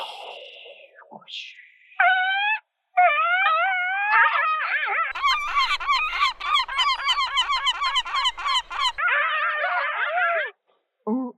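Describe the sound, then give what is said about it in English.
A voice imitates a seal's barking with loud, nasal honks, first a few drawn-out calls, then a rapid rhythmic run of short barks, ending in a longer honk. “That's a seal.”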